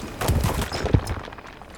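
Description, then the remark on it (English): A rockfall with climbing gear crashing as a climber falls about 50 feet: a quick flurry of heavy thuds and clattering impacts, one sharp crack standing out, then a fading rumble. Fairly loud, with no voices. “You hear the gear crashing and rock fall, and then I'm getting pulled up and it's this kinetic violence.”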